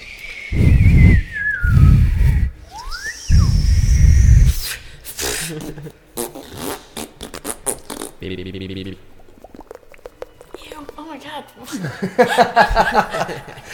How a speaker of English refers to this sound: It's going to be lots of that, except it won't be me because I don't know how to whistle.